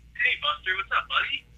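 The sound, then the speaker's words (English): Muffled, tinny voice audio from a caller's radio playing in the background comes through a phone line during a call-in to the show It's All Nice on Ice, in five quick bursts with no clear words. “Yeah, you gotta turn the radio down in the background.”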